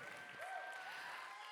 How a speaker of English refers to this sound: All right, let's give Pastor Travis a big round of applause and a thank you. Thank you for bringing the word this week. We appreciate it.